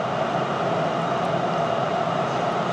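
A steady, loud rumble and rushing roar of a subway train moving along the tracks, continuous, filling the space without pause and with no voices.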